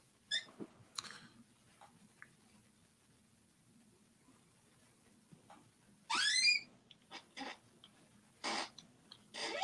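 An office chair creaks and squeaks in short, scattered bursts, with one louder, drawn-out rising squeal partway through, followed by a few quick creaks. No one speaks.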